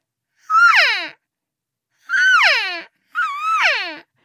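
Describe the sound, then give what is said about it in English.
Three whiny, nasal mews from a hunter's elk cow call, made while hunting in a field in the Gila, New Mexico, to see what was in the area; each rises briefly then slides down in pitch, fairly loud and separated by short silences, with no talking. “We were down in this field, and I decided to do a cow call to see what was in the area, and the cow call sounded like this.”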